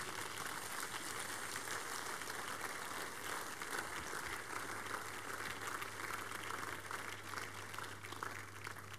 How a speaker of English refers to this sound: Rise to your feet. Give the Lord the biggest clap offering.